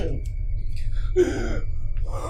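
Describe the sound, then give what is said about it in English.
A person voices a short, breathy gasp imitating a corpse letting out a gasp as its body is pulled, a rasping intake of air over a steady low hum, followed by a softer breathy exhale near the end. “As you pull the body, it lets out a gasp.”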